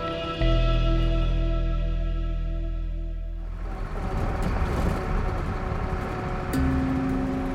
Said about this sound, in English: He rubs his eyes and sees that the OES school bus has just entered the Timberline Lodge parking lot here at the base of Mount Hood.